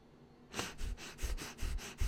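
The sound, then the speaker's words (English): A person demonstrates nervous, stressed breathing: quick, shallow, rhythmic puffs, about seven rapid breaths in a row, fairly loud, like panicked panting. No talking. “You're going to be doing rapid breathing.”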